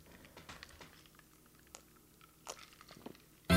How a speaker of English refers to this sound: Think about that shit while I take this transitional sip.